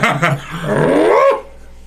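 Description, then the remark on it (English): A dog barks: two quick sharp barks followed by a longer, rising whine-like bark that cuts off, loud and clear with no talking over it. “I actually am very mad at the fact that he barked.”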